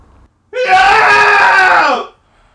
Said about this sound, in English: And that was today's Daily Cathartic Scream.